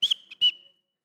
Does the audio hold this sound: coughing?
no